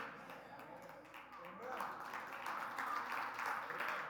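Soft, scattered golf clapping from a small crowd, a light patter of claps that swells slightly after the first second and continues unevenly to the end.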